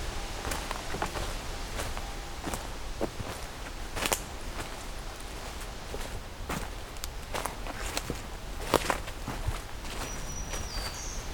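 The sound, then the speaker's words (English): Footsteps crunch steadily through the woods while, near the end, a faint, high, buzzy black-throated green warbler song drifts in. “Black-throated green warbler.”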